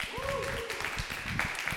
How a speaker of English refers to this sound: This is the Comedy Butcher. Hey, real quick, round of applause if you've been here before.